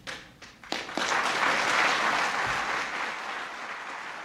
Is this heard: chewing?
no